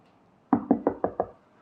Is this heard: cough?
no